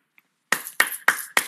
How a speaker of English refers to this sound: And I could not help myself. I could not stop myself. I said, please don't hit the mic. Do that. The mic is on. Please don't. Do not do that. Yeah. I was like, please don't do that. The mic is turned on.